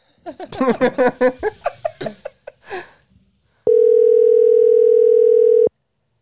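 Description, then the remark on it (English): Laughter fills the first few seconds, then after a short pause a single loud, steady electronic ringback tone from an unanswered phone call sounds for about two seconds before cutting off. “Damn, nobody answers their phone anymore.”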